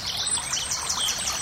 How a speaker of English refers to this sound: There's some beautiful trees around, and I can hear a river down there.